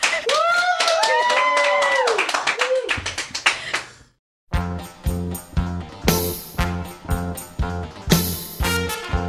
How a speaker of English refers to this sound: Daizenshuu EX is filmed before a live studio audience. The applause sign is going.